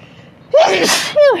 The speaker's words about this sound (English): I gotta sneeze.